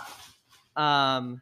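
A dog named Chewy gives one loud, drawn-out bark, preceded by a moment of faint rustling and quiet.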